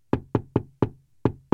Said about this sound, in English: But they knocked on every door.